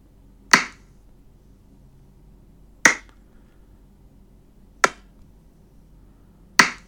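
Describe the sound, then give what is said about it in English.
Four sharp dart thwacks land one after another at irregular intervals of roughly two seconds, each a crisp, loud impact that dies away quickly over a faint, steady hum. “Anyway, these are some of the sound effects. Beautiful dart sound effects.”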